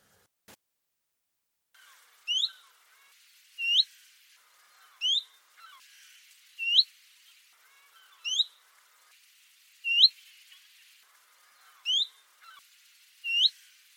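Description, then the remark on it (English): Chiffchaff and willow warbler calls played one after the other, a series of about eight clear, rising 'hweet' notes spaced evenly at roughly one-and-a-half-second intervals, alone against a quiet background. “What I'm going to play for you next are chiff-chaff and willow warbler calls one after the other.”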